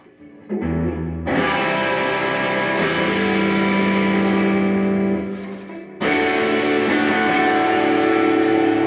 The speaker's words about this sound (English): Now, I think I should hit some distortion.